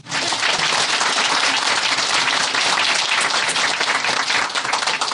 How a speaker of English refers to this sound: Applaud to the storyteller, at least, huh?